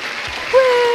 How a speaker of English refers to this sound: There was one extra guy clapping at the end. What? What? You know how there's like the guy who always likes to do the last clap, like when an audience...